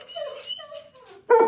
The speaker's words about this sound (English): This is my dog, Fenway Bark. Mr. Fenway Bark is his name, actually. Apropos. And he is an Airedale Terrier.